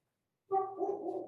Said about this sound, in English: In the distance, a dog barks. It's the town dog.